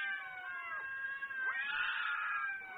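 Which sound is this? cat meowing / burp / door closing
cat meowing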